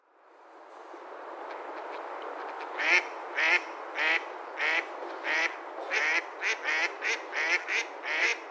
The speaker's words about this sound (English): Mallards are probably the most commonly recognized aquatic birds. Males have a green head, brown chest, yellow bill, and white collar. Females are mottled brown and white, and they have a brown stripe of feathers through their eye.